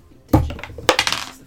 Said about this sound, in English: Roll a d6.